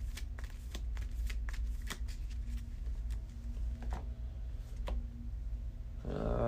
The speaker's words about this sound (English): So, and I got to put a card back in that spot. Shuffle the cosmos up.